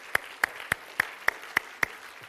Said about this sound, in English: Come on, clap for joy, somebody.